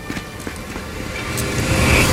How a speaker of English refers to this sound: Pull the car around.